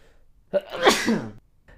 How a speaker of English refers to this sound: I got to sneeze. Hold on.